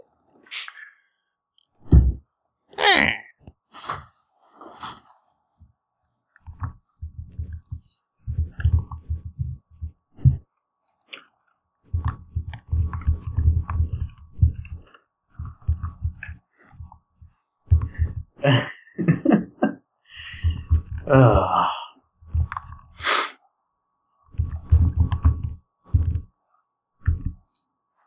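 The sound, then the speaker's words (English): Keys clatter on a quiet-model computer keyboard on a desk in irregular bursts, each press a soft click over a dull thump, as if typed hard and fast, with no talking. “Are you still using the quiet keyboard? Yes, I am. Still makes a bit of noise. Really pounding that thing, I suppose.”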